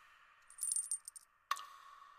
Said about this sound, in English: I thrust a torch through the remaining aperture and let it fall within. There came forth in return only a jingling of the bells.